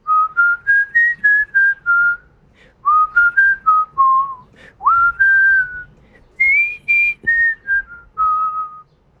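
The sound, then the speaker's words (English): A person whistles part of a song into a microphone, clear sustained notes in short phrases with brief pauses between, including a noticeable upward slide into one note, with no talking over it. “Can you whistle the part?”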